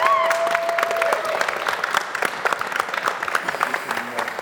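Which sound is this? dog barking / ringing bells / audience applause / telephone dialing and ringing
audience applause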